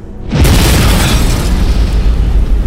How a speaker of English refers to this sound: I jump as there comes a sound of twisting metal and shrieking mechanical parts, followed by a deafening boom.